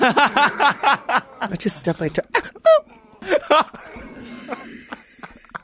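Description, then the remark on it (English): A person makes a few short, abrupt hiccups between breathy vocal noises, with a quieter stretch of murmuring toward the end. “Got the hiccups?”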